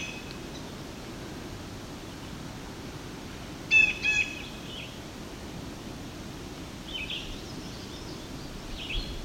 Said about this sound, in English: It's a variety of vireo here too.